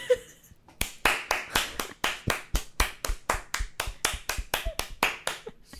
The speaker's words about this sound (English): You can hear which claps were good. Oh, here we go again. Right? There they were. They were all good, honestly. There's like a little, like a resounding Mac, little echo or something.